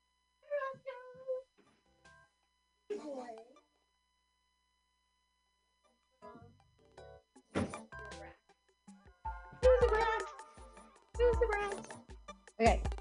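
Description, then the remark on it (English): A cat meows plaintively a couple of times to be let in, then after a pause come several loud thumps and clattering knocks, like a door being handled. “Then wait, hold on, I gotta let the cat in.”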